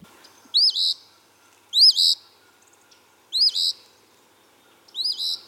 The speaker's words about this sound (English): There's this bird called an eastern phoebe. I'll play you the sound of it. This is my nature alarm clock that woke me up today.